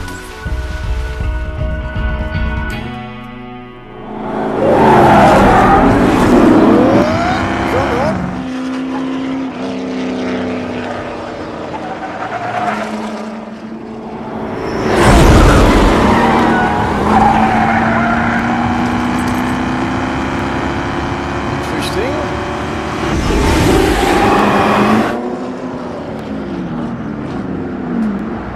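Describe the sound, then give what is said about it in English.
A loud engine of a race car prepared for Le Mans, just flown in from England, revs hard and climbs through its gears, the pitch rising in long sweeps with a roaring burst at each shift, without voices. “It's worse than awful. Yeah, it doesn't track. You know, the third gear is too high.”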